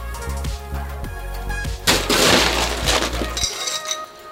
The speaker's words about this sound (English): 2 dashes of aromatic bitters. 2 dashes of orange bitters go in the mixing glass, and then top that all off with ice.